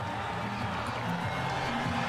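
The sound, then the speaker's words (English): A large crowd roars and cheers in a steady, unbroken wash of noise for about two seconds, with a faint low hum running underneath, as Ronaldo walks in at his press conference in Saudi Arabia. “You can hear the crowd.”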